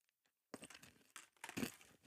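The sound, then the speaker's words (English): Crunching of peanut M&Ms being chewed: a quiet start, then a run of dry, crackly bites with a sharp, louder crunch near the end, no talking. “Listen to that crunch.”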